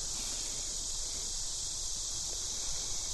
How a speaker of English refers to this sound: As you can hear, it's a cicada year in Rochester. Yeah. I think I'm going to add this to my relaxing environments recording collection.